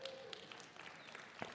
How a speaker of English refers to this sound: I'll tell her, you guys clap for her, all right?